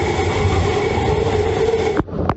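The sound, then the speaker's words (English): At the height of a storm, wind roars through a window a resident opened a few inches, a loud, steady rushing with a faint whistling tone, cut off sharply near the end by a couple of brief knocks. “This is what it was like at the height of the storm when a resident opened a window just a few inches.”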